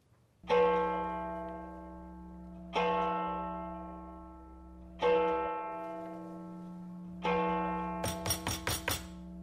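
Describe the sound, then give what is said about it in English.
A clock strikes four o'clock in the morning, each of the four deep resonant bongs evenly spaced and ringing out in a long fading hum, followed by a quick burst of sharp rapping knocks. “Four o'clock in the morning.”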